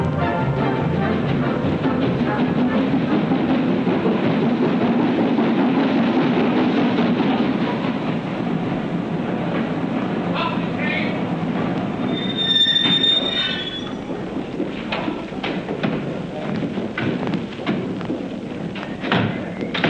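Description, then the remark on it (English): A train arrives with a steady heavy roar, easing off as it slows; a sharp high wheel squeal rings out briefly near the end amid clanks and thuds. “Miss Faber asked me to meet the train.”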